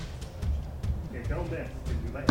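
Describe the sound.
Dice clatter and bounce in a handful of quick, sharp clicks as they roll off a sheet of paper, ending with a louder knock, while voices murmur softly in the background.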